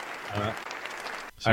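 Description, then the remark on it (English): A steady burst of hand clapping fills the short stretch, a dense patter of claps at moderate loudness, with voices talking over it at the start and again at the end. “I was trying to give a clap to not falling asleep.”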